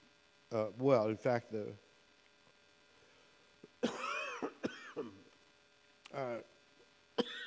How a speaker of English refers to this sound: apologize for the coughing that is going to take place